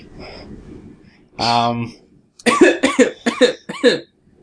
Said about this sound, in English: He did note that someone forgot to turn away from the mic to cough. Which I think you just did that again.